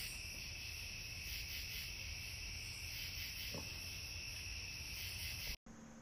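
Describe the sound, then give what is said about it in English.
A dense, unbroken chorus of cicadas buzzes steadily in a garden on a summer night with no one speaking, the high shimmering drone holding constant before cutting off abruptly just before the end. “That's our garden on a summer night. You can hear the cicadas.”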